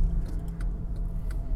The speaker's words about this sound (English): I'm so upset by this. There's traffic on the street I need to turn on. And somebody's playing really loud music on their motorcycle speaker.